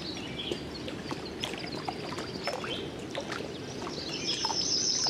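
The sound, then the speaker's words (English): A yellow-rumped warbler sings bright, ringing chirps and a quick high trill near the end, moderately loud, over a steady rushing background like moving water. “I'm not positive, but I'm pretty sure it's a yellow-rumped warbler.”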